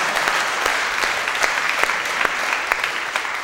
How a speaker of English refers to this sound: Well, thank you for saying that. I appreciate that. Don't I get a clap? Yeah.